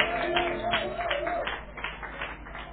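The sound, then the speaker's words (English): A church audience claps together in a dense, steady round of applause as a clap offering to Jesus, with a wavering held tone sounding underneath for the first half before the clapping thins out slightly. “If you were, give Jesus a big clap offering in the house.”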